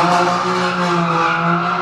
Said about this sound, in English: M3. What? M3. Tire squeal out of that. Yeah. I just see a cloud of dust now.